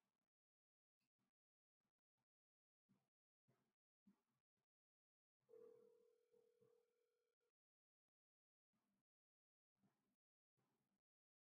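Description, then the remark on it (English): A telephone dial tone hums steadily for about two seconds over a hissy line, framed by scattered short clicks and bursts before and after, with stretches of silence between, as a disconnected phone call is being redialed. “The phone disconnected. We are getting them back on the line.”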